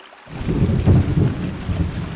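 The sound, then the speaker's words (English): A steady wash of light rain with a low, rumbling undertone, starting abruptly after a brief silence and holding at an even level throughout, with no voices. “And while the rain has been pretty light, that could always change.”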